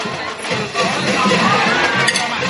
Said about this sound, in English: That will negate a first down, and the cowbells are starting to come out.